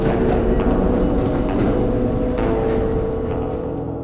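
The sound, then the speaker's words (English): A subway train arrives at a subway platform, rumbling loudly and steadily, a dense low roar with faint metallic squeals on top, easing off slightly toward the end. “If you couldn't tell, that was a confession recorded on a subway platform. And then partially in the subway once it came.”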